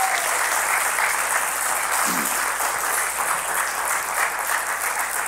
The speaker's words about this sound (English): Can we give these gentlemen a big round of applause?